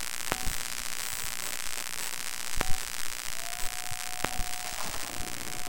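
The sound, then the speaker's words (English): Electromagnetic noise from electrical devices in Temple Bar Square during icy weather, picked up with homemade headphones: a steady bed of buzzing static with faint high whining tones, broken by three sharp crackling clicks and a brief sustained tone midway, no voices. “And I have this special pair of homemade headphones which allow you to listen to sounds coming off electrical devices.”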